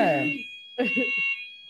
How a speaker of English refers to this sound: No, we've had an alarm go off while we was live. Yeah. But it wasn't long.